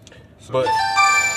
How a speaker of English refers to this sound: Y'all might hear my phone ring because that's my sister calling me. And she came from out of town, so that's my sign.